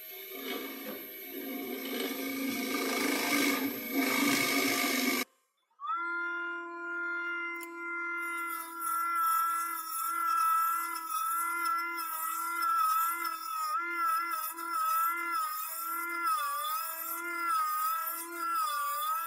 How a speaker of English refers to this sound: Well, the first thing we do is I've got a drill and I make a little bit of a hole in here.